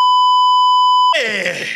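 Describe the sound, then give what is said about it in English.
A loud, steady censor bleep holds a single pitch for about a second, then cuts off abruptly as a man's strained, shouting voice breaks in. “Are you going to beep?”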